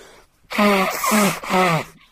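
A man blows his nose three times in quick succession, loud and honking, each a harsh rush of air with a buzzing tone like a trumpet or horn that slides slightly in pitch, with no talking.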